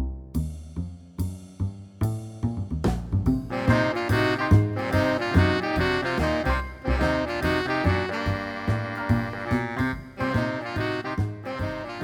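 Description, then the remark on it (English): Smooth jazz plays on its own, opening with a few sparse chords before settling into a full, steady groove with warm melodic lines over a relaxed beat. “Here's some smooth jazz to play you out.”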